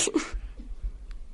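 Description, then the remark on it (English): A single mock sneeze, a voiced "ah" bursting into a sharp, breathy "choo". It is fairly loud and quickly followed by near silence with faint background rumble. “And in front of the whole theater, I was thinking to myself, don't sneeze. You've got to be dead. Don't Achoo! And then you sneeze.”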